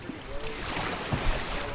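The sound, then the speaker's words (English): Rushing river water churns steadily around a small paddled boat as it rushes into a tight bend with rolling whitecaps, on the river stretch known as Fern Gully rapid; a broad wash of noise with occasional low knocks and splashes, continuous throughout. “We round a bend, and the water grows louder as it rushes into a tight curve, flashing with rolling whitecaps.”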